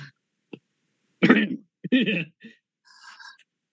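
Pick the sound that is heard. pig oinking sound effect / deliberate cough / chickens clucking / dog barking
deliberate cough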